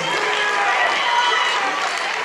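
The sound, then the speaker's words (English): A loud, sustained roar of men cheering and hollering in a church, many overlapping male voices blending into a dense, steady wash of noise with no single words standing out. “That was the loudest I ever got some men to cheer in church.”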